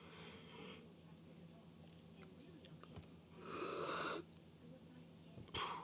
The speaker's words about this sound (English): Forgive me for yawning. Again, it's 2:10 in the morning.